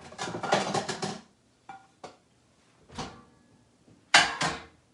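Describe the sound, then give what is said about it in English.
A pizza is set into a microwave to cook, with a burst of rustling and clatter, followed by a few sharp clicks and two louder thumps as the door is pushed shut. No one speaks. “All right, so let's throw this in the microwave.”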